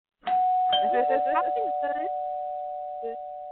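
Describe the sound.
A doorbell chime sound effect, played on a radio call-in show to announce a caller, rings out loudly and its steady tone holds and slowly fades over a few seconds, with voices talking over the start of the ring and a brief sound near the end.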